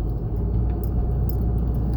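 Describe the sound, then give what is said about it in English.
A steady, low rumbling drone of road and engine noise inside a moving car, continuous and fairly loud, with a couple of faint high rattles or clinks and no talking. “Please excuse the background sound. I am in the car.”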